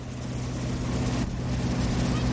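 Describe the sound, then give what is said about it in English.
A motorboat towing water skiers drones steadily, a low harmonic engine hum over a broad wash of water and wind noise, holding an even loudness without pauses. “That's them water skiing.”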